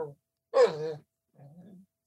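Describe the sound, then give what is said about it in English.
A basset hound in a studio lets out a short, loud, throaty bay-like yowl, followed after a pause by a softer, lower groaning whine, with no talking. “I have a dog in the studio.”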